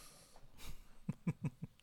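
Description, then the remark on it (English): Someone blows their nose: a breathy rush of air, then four short, honking snorts in quick succession, fairly soft, with no talking. “Is that a lot of stuff coming out of the nose?”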